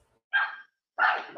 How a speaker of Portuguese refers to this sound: Deixa aí, o cachorro começa a latir.